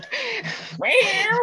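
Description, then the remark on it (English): A Siamese cat yowls loudly in two drawn-out, wavering cries, the second rising higher and more insistent than the first, with no talking. “He's a Siamese. He can't help it.”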